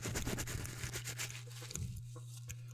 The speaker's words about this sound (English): Some fucking scissors.